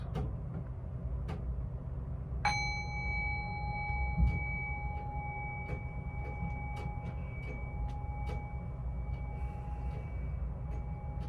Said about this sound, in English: Thank you very much, and I'll just ring the bell here to close.